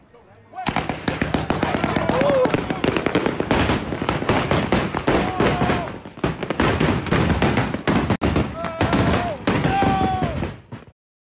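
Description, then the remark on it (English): Rapid, continuous bursts of fireworks set off at a house on the 4th of July crackle and bang for about ten seconds, a dense, loud barrage with occasional whistling tones, and voices faintly audible beneath the explosions. “when Chief Keef almost blew up his own house playing with fireworks on the 4th of July? Well, here's the video.”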